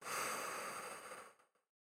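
A deep breath pushed out through the mouth in one long, airy whoosh during a guided breathing exercise with Palo Santo smoke, soft, lasting about a second and a half before trailing off into silence. No one speaks.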